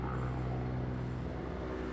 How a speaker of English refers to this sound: Again, we can hear. I think the chopper is now close by. Maybe there are two choppers coming. There are four. Four choppers coming.